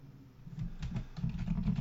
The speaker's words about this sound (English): I'm typing there.